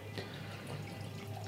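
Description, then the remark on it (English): Wine pours steadily into a glass, a soft continuous trickle with faint gurgles and a low background hum, no voices. “I'm going to pour some more.”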